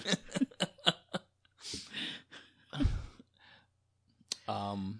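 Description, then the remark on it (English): A few quick clicks and breathy exhales lead into a drawn-out yawn that ends in a long, low, voiced groan. No words are spoken. “Okay, well, you're yawning already.”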